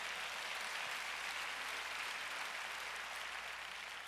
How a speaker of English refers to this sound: And if you know I'm right, clap your hands about it.